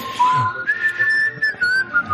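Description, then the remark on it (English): Several people whistle a Mormon primary song together, a simple, gentle melody rising and holding steady on long notes at a moderate level, with no talking. “In the background, we hear a group whistling the Mormon primary song, I Hope They Call Me on a Mission.”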